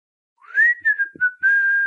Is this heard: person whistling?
yes